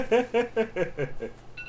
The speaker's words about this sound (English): Yeah, and suddenly alarms are going off in the room. I will go turn that off.